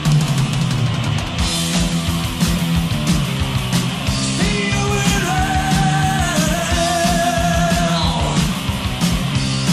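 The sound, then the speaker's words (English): Loud, dense heavy metal with pounding drums and distorted guitars, and a high, sustained screamed note from the singer that holds for several seconds midway before the band carries on. “I love that scream that he does. That's the greatest scream.”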